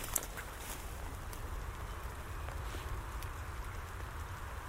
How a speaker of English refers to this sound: Oh, heck, now I'm in heather. And it's coming on to rain quite heavily again.